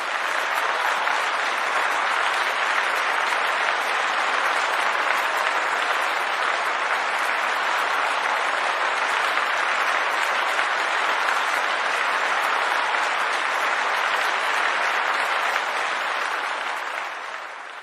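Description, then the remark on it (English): Steady, dense applause from a crowd, many hands clapping at once in a continuous loud wash that holds evenly for about eighteen seconds before tapering slightly at the end. No voices stand out. “So round of applause to you guys.”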